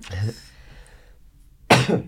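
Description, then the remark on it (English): Two separate coughs from one person, a short throaty one followed after a brief quiet pause by a sharper, louder burst. No talking in between. “Cough it out.”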